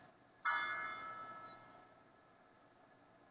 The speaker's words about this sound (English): Did you just hear that? Those are church bells. There's like a morning service going on somewhere.